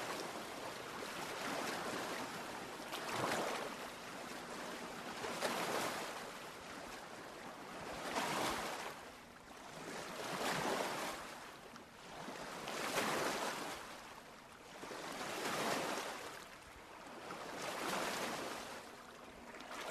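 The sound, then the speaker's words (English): Stormy ocean waves surge and wash in a steady rolling rhythm, swelling roughly every two to three seconds around a ship, with broad hissing spray and no voices. “Take some time to reflect on how life in the joy and freedom of true Christian community can feel like this life-saving ship in a storm.”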